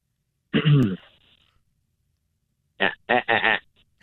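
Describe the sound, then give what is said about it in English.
A man's voice imitates a goat's bleat: one harsh, throaty blast, then after a pause a quick series of three or four short, wavering bleating sounds, fairly loud. “That was definitely not a goat. That was a horrible goat sound.”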